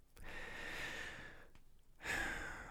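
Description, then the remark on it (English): Heavy, breathy exhalations: one long, rushing breath, a short pause, then another strong breath starting, with no talking. “I don't know why you breathing hard.”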